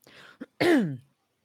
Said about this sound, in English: I just keep having to clear my throat over and over again.